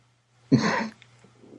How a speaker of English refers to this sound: Sorry, I was having a coughing fit or I would have laughed at that.